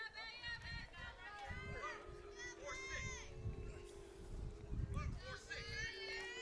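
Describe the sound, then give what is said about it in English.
The Independence team's dugout at a softball game shouting cheers, several high, raised voices overlapping in a steady, sing-song chant that carries through the whole stretch without letting up. “Now the dugout is shouting, oob.”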